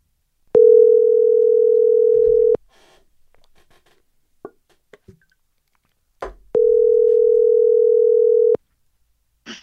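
A phone call ringing out: two long, steady ring tones about two seconds each, separated by a pause, loud and clear, with faint clicks and rustling between them and no talking.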